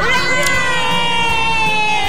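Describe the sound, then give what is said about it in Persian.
A group of high-pitched voices, Santa Claus and his friends, cheers "hooray" together in one loud, sustained shout that fills the whole moment, bright, with no other sounds around it. “سنتا کلاس و دوستاش خوشحال شدن و هورا کشیدن.”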